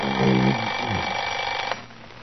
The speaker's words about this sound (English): Alarm.